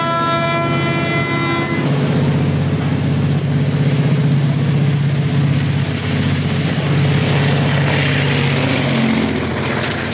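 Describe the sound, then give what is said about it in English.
A Taiwanese Fuxing (复兴号) passenger train, a type first built in Taiwan and in service since 1981, rumbles along steadily, opening with a brief high, tonal horn-like blast before a loud, continuous roar of wheels and engine drone carries on without any talking. “A 复兴 train, 复兴号, took its last trip ever on March 29th.”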